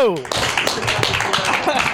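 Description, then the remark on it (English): An audience applauds Jimmy Conrad, who played on the men's national team, with steady, dense applause, many hands clapping at once in a loud wash that holds for the full two seconds, with a brief whistle-like tone at the start and cheering voices mixed in. “Ladies and gentlemen, nice big round of applause for the Jimmy Conrad.”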